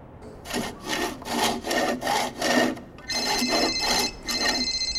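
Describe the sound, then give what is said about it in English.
A hand saw rasps loudly through a tree trunk in steady back-and-forth strokes, cut by someone on a ladder with snow on the ground; partway through, a cell phone starts ringing with a high electronic tone while the sawing carries on. “I want you to have the fun of sawing through the tree trunk.”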